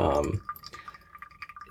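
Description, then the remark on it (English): A thin, steady trickle of water pours slowly and quietly from a gooseneck kettle into a large Chemex coffee brewer, continuous with faint splashy flickers, following a brief louder burst of sound at the very start. “I mean, I definitely pour slowly than with a larger kettle, just because the nature of the spout allows me to do that.”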